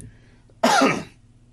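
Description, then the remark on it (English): A single loud throat-clearing cough, a harsh half-second burst that rasps and fades, with no talking around it and only a faint background hum. “You know, with my stream going in and out, it's really kind of nice because when it does, I cough.”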